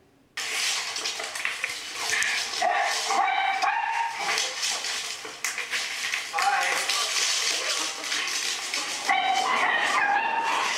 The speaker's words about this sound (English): It's funny because you can hear the dog sort of barking in the background.